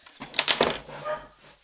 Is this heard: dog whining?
yes